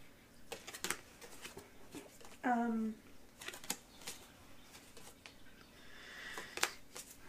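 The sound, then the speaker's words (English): Crisp clicking and riffling of a deck of cards being shuffled in quick irregular bursts, with a brief squeaky tonal sound partway through. “I shuffled these.”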